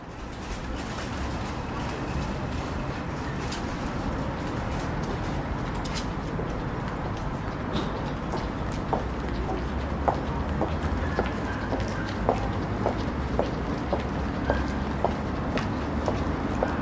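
Outdoor car park ambience at the car park in Disney Village: a continuous low rumble of engines and traffic, with scattered clicks and light knocks that grow more frequent toward the end. No one speaks.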